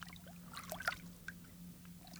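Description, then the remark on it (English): Soft, quiet water sloshing and lapping, with a few gentle splashy surges near the middle over a low, steady hum; no voices. “There was no other sound than the soft push of water.”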